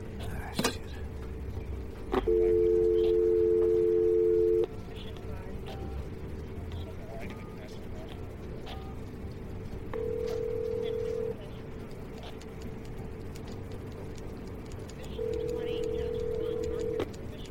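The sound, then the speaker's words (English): A desk telephone on a counter has its buttons punched to dial, and the line rings: a steady electronic tone sounds for a couple of seconds, then repeats twice more after long pauses, over a low, murmuring background. “You can use the one on the counter right there. Just punch one of them buttons that's not lit up.”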